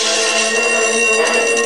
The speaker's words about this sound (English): When the burglar alarm went into action, so did you.